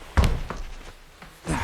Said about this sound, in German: zog eine Karte durch ein Lesegerät und mit einem Piepen öffnete sich die Tür.